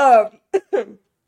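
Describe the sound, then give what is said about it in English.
A sick person filming a video gives a short, strained vocal sound followed by two quick, harsh coughs in succession, moderately loud and abrupt, with no talking in between. “But, sorry, I'm gonna start coughing.”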